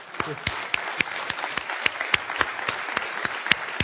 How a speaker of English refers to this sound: And by the way, all this applause is for all of you women.